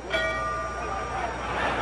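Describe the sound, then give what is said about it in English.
A boxing ring bell at the Cassius Clay versus Sonny fight is struck once and rings on with bright, sustained overtones that slowly fade, over a steady bed of crowd noise. “But guess what? That bell rang.”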